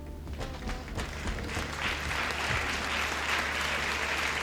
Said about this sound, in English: And by the way, it's sad to hear that the audience did not comply with his request in the slightest. It is the exact same amount of applause they give every single time.